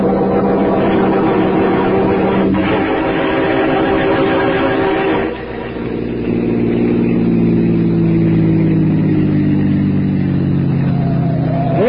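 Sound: car engine driving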